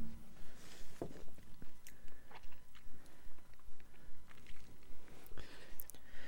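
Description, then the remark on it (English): A man quietly sips a warm, berry-flavored cola-style soda, with soft wet mouth sounds, small gulps and a faint crackle of carbonation, plus a few sharp clicks and no talking. “He's taking a sip.”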